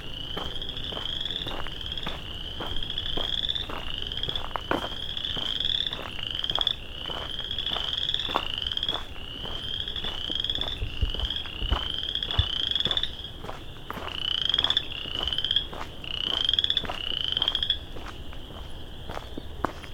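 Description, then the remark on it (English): A dense chorus of chorus frogs trills continuously in the evening, rising, creaking calls repeating rapidly and overlapping, with occasional soft footsteps or rustles in the foreground and no speech. “An Evening With Chorus Frogs”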